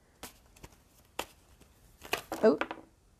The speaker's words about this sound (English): Let me like shuffle this little pile I got here. Like a whole lot came out. There we go.